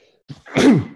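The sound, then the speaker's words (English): A single sneeze, fairly loud: a brief sharp intake of breath followed by a forceful, breathy burst that trails off quickly. No one speaks. “Bless you.”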